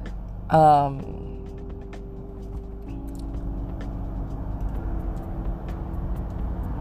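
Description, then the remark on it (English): A car idling in slow traffic: a steady low engine hum and road rumble throughout, with a short voice-like tonal burst near the start, then continuous drone at moderate level. “I'm going to try not to make it as long, although I am stuck in traffic, so I have quite a bit of time before I reach my next location.”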